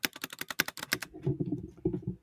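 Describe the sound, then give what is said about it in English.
Typing on a red Corsair Vengeance K70 mechanical keyboard, recorded with an amplifying microphone right up to it: a quick run of sharp, bright key clicks, followed by softer, duller key thuds in an uneven rhythm. No one speaks. “That, I'm using a red keyboard, and it's not that loud. Well, I put an amplifying microphone right up to it.”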